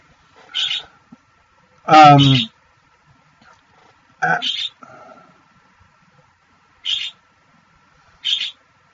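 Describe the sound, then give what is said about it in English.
Short, bright calls of a pet bird chirp in bursts, about four or five of them spaced across several seconds, with a brief stretch of a person talking in between. The calls are moderately loud. “That's my bird in the background. Stop!”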